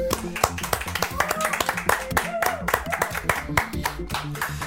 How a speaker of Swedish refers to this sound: Så vi ger en stor applåd och välkomnar Gunnar Wall.